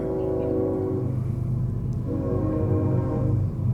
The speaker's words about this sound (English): And by the way, hold on one second. We'll hear it. The train is coming. Hallelujah. It's the glory train.